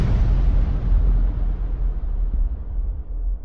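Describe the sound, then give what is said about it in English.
A massive explosion sound effect representing the Big Bang erupts all at once, then rolls on as a deep, loud rumble whose hiss steadily fades, leaving heavy low-end thunder through the end. No voices. “Welcome to the Big Bang.”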